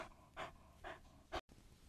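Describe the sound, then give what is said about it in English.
A dog named Walker pants in three quick, breathy bursts at a steady rhythm, the last one sharp and slightly louder before a brief cut to silence. “And this is our special guest, our dog, Walker.”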